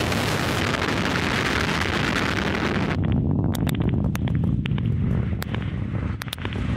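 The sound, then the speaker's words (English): A United Launch Alliance Atlas V rocket lifts off carrying the NROL-79 mission for the National Reconnaissance Office, its Russian-built RD-180 kerosene and liquid oxygen engine firing. The roar is loud and continuous. A harsh, hissing blast fills the first few seconds, then eases into a deep rumbling thunder broken by sharp crackles and pops. No one speaks. “Liftoff of the United Launch Alliance Atlas V rocket carrying the NROL-79 mission for the National Reconnaissance Office.”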